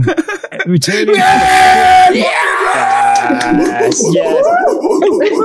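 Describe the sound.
An audience cheers and yells loudly for several seconds, a dense roar of overlapping voices with shrill whoops and shouts rising above it, holding steady throughout.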